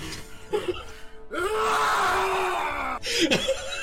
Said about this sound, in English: Alright, I will go and use my bonus action to go into a rage. Alright. Let's hear that yell.